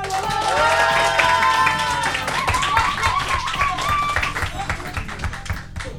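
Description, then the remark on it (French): An audience applauds with dense, steady clapping throughout, while a few raised voices cheer and whoop over it early on, before the applause thins slightly at the end. “Est-ce que vous pourriez, s'il vous plaît, vous applaudir de fou?”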